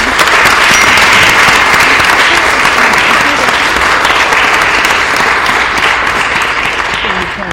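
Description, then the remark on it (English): A crowd gives a round of applause for the group Women for Progress in Mississippi, a dense wash of clapping hands that holds at full strength for several seconds before easing slightly toward the end. “I want to give the Women of Progress, Women for Progress in Mississippi, a round of applause.”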